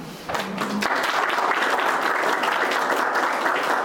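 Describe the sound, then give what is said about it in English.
A crowd breaks into sustained applause for election candidates, a dense, steady wash of many hands clapping that swells quickly after a brief pause and holds at a strong, even level. “Ladies and gentlemen, please just do another round of applause”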